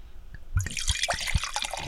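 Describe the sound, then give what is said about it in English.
Grenache wine is poured into a glass: a steady liquid stream with low glugs and bright splashing that starts after a brief quiet moment and carries on to the end, with no talking. “All right, a Grenache Day pour.”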